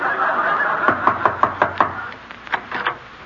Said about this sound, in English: Don't ring the bell. Can't you read the sign? Maid sleeping. I'll knock.